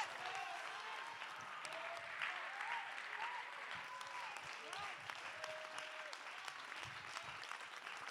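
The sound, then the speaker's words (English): An audience claps hands steadily in a dense, continuous wash of applause, with scattered voices calling out and murmuring underneath throughout. “No, I need somebody to clap their hands right now.”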